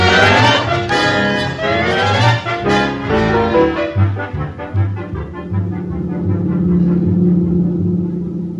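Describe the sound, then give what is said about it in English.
A car engine rumbles steadily and loudly while being driven to school in the morning, a deep continuous drone with a rough, throbbing texture, with no voices. “It was nice of you to pick me up this morning, Walter.”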